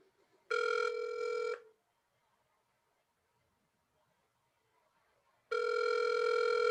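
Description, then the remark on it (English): A phone line rings on an outgoing call to a self-storage company in Los Angeles: two steady, loud electronic ring tones about a second long each, separated by roughly four seconds of near silence, with no voices. “He does a backtail shove on a bank that has a phone number in the background for LA Self Storage. Do you guys want to call it? Yeah, call it.”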